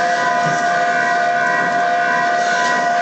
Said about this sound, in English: You recognize these bells? Yeah, this is the town alarm. They only ring these when something's coming out of the bog.